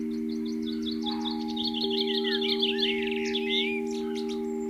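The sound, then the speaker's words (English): Small birds chirp and twitter at a garden bird table where fresh food was put down, recorded by a microphone on top of the table; a rapid run of tweets gives way to busier trilling calls, over a steady low electrical hum. “So I ran outside, frightened them off, put some more food down, but put my little microphone on top of the bird table and then ran back indoors, set it recording.”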